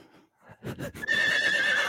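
A horse neighs loudly, a rising whinny that settles into a sustained, quavering cry lasting about a second. There is no talking.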